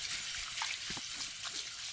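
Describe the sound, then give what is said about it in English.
Shower water runs in a steady, hissing spray, with small splashes and drips scattered through it. The sound is continuous and fairly soft, with no voices. “He found comfort in the ritual of hopping in the shower and scrubbing up.”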